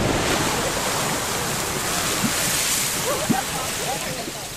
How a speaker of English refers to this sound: a park guide pours detergent into the Lady Knox geyser to set it off